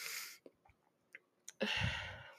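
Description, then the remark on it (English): A stifled, muffled cough: a breathy burst, a few small clicks and throat sounds, then a longer, heavier huffing exhale held back, with no talking. “I am trying so hard not to cough, but please bear with me.”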